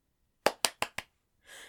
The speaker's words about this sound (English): It must have had hands, because it clapped them.